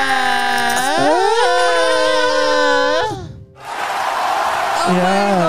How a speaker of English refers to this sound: These people are so crazy. I mean, like, oh my God. You guys love clapping. Wow. Wow. You guys are such a good audience.